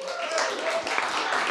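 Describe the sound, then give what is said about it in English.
An audience applauds the women of Manifesto in Verse, a dense, steady wash of many hands clapping at an even level for the whole moment, with faint voices mixed in underneath. “Let's give the women that are sitting here that are part of Manifesto in Verse a round of applause.”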